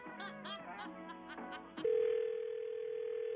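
A loud, steady electronic telephone on-hold tone hums for the last couple of seconds, after a brief stretch of nasal, squawking warbles at the start, heard by a caller put on hold by an office.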